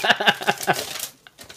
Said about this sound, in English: Hold on. I'm actually opening an envelope. It sounds cool.